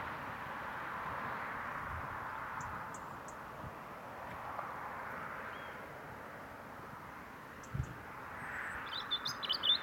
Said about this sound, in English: Yes, I can see that robin now. I'm going to get a little bit closer and try and record him. And I will be quiet.